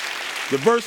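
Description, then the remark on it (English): A crowd claps steadily for Jesus, the hand clapping a dense, hissy wash that fills the whole second, while a voice briefly calls out over it partway through. “Let's give a hand clap for Jesus.”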